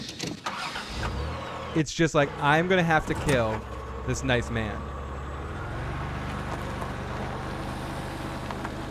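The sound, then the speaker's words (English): A steady, low car engine drones inside a moving car while a man speaks briefly near the start; the talk stops and the even rumble continues alone for several seconds. “Yep, that's the sound of the car when you know you have to kill a nice man.”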